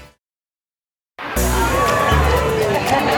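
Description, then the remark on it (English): A second of silence, then loud chatter from a morning crowd on an outdoor plaza bursts in at 8:30: many overlapping voices forming a dense, steady hubbub that carries on without a break. “We are here on the plaza. What an awesome crowd.”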